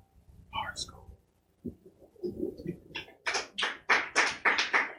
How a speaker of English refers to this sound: Yeah, you get it. They're still clapping. Who raised them?